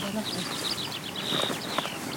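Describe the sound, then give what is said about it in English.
A skylark sings overhead, a continuous stream of rapid, high-pitched chirps and trills, fairly faint over a low background rumble and soft footsteps. “All the while the skylark sings above us.”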